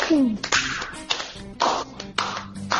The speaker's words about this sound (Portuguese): Palmas lentas.